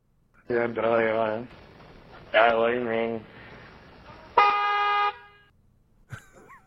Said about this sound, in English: Here is male speech with horns honking in the background.